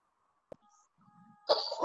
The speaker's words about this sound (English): Go back, because you started coughing